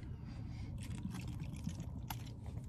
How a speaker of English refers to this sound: So I got a full thing of water that I just slammed. I'm slamming another, and I got another full thing hydrated. I'm gonna be hydrated today, unlike yesterday.